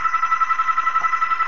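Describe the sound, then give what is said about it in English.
A loud, steady electronic ring with a fast warbling pulse, like a telephone bell trilling continuously throughout, with no voices. “This is almost as bad as the phone.”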